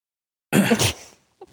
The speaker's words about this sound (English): Dramatic cough. Oh, no. Yeah. I'm sick. Like, it's not obvious. Just pointing that out now if I sound funny.